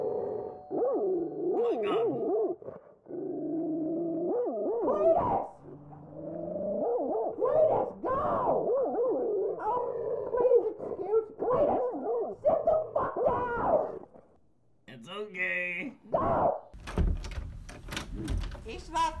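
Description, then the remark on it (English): A large dog howls in long, wavering, drawn-out tones for over ten seconds, then gives a few sharper barks and yips near the end, fairly loud. “Yeah, he's a big dog.”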